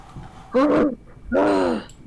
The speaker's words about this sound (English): Did you hear that? No, my dog is snoring right next to me.